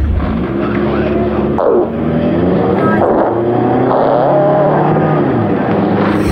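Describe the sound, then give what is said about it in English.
A loud car engine revs up and down for several seconds, its pitch rising and falling in steady surges, continuous with no voices. “on the track …, again, was a tougher one”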